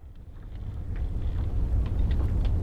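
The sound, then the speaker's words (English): A deep, steady thrum from the engine of an icebreaker trapped in a snowstorm rumbles continuously, with gusting wind noise hissing over it. “How about the thumming engine of an icebreaker trapped in a snowstorm?”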